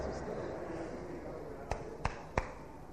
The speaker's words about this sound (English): Wait. Somebody is interrupting. Somebody is clapping. Hey, wait.